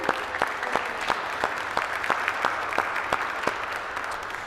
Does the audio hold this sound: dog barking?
no